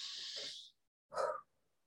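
A slow, deep breath drawn in with a long airy hiss, followed after a short pause by a fuller, breathy exhale, fairly quiet, with no talking.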